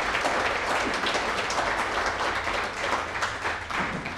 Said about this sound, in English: Let's give the lovely Dr. Scott another round of applause. Thank you so much for being here.